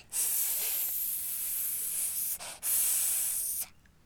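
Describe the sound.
A child's voice imitates the hiss of a Titanoboa, a giant snake: two long, steady breathy hisses, the first about two seconds, with a brief gap before the second, fairly loud and alone.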